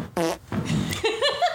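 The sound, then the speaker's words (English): A couple of loud fart noises, the first short and buzzy, the second longer and sputtering with a rising squeaky tail. No talking, just the rude blasts on their own. “Birthday fart. Drop an extra one for good luck.”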